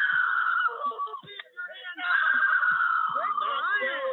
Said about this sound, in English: 11-year-old girl, handcuffing her as she screamed for her mother to help.